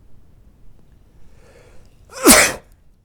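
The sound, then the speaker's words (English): A single loud sneeze bursts out after a brief faint intake of breath, with quiet hiss before and after. “It's in the sneeze.”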